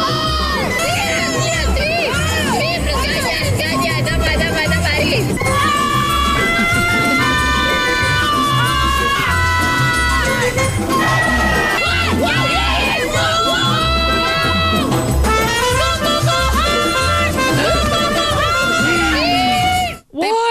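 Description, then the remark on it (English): Women curlers shout and scream loudly during a curling match, almost without pause, with long, wavering high-pitched yells overlapping one another above a steady low thumping pulse for about twenty seconds. “These are the women screaming.”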